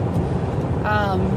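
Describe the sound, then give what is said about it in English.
A loud car engine drones steadily while a woman drives and records a YouTube video, a thick low rumble filling the whole stretch at constant volume, with a brief voice-like murmur rising over it near the end. “That's a loud car, isn't it?”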